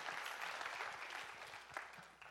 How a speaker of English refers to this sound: And so let's just praise. Come on, give a thank you. Clap to the Lord.